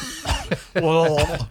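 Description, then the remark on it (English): A couple of short, harsh coughs, followed by a drawn-out, gravelly throat-clearing rumble and a final hack, sounding thick and phlegmy, from phlegm left after eating greasy food at lunch. “You get McDonald's cough or like... McDonald's cough. Blog throat.”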